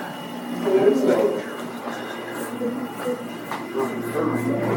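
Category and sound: machine, elevator running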